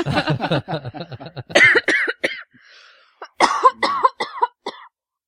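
Close, harsh coughing comes in a raspy fit, breaks off for a brief pause, then returns as a cluster of sharp, loud coughs before stopping.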